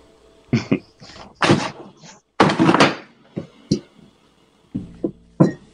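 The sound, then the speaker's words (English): A series of loud thumps and bangs as a table is kicked, with a longer rattling crash as a beer tips over, followed by a few scattered knocks. “What are you kicking now, dude?”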